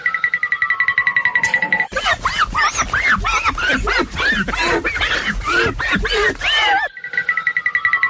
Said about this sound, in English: Yeah, that's kind of how that went. Many thanks to Fred Flintstone for his tippy toe sound effect there.